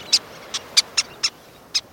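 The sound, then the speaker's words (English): A series of six sharp, high-pitched squeaky calls from least terns, each brief and irregularly spaced over two seconds, standing out clearly against a soft background hiss with no talking. “Sounding like squeaky toys, least terns dive in the surf, catching small fish.”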